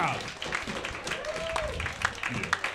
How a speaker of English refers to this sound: One more round of applause for that. That was fucking awesome. That was awesome.